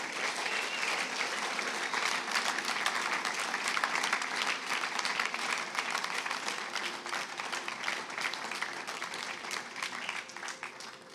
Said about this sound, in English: Just let's give them a round of applause. Come on, come to the front. Awesome. Friends, let's give them a round of applause.